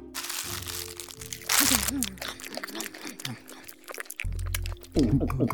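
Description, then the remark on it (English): Loud crunching and chomping of someone eating crunchy fizz candy bars, in repeated bursts, mixed with muffled voiced mumbling and murmurs between bites. “We ate all the fizz bars.”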